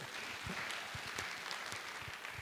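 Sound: round of applause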